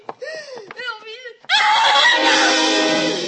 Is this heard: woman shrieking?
yes